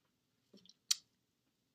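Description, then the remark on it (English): A quick sip of water: a soft wet slurp, then a sharp gulping swallow, and a faint click moments later, with no talking. “Let me go ahead and take a quick sip of water.”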